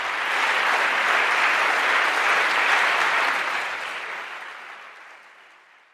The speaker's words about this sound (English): I thank you all for coming and for participating in this. You can give us a fiery round of applause as we march out of this auditorium.